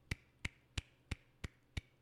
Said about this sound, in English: Golf clap for you, buddy. Well deserved, because that's a hard thing to do. Seriously. Golf claps are like inherently sarcastic, aren't they? I don't mean for them to be. That was genuine. That was a legit golf clap.